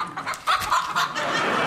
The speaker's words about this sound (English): It's a dumpling, and here's a carrot, and a Wiener schnitzel, and a small slither of game tureen, and under the table is a chicken.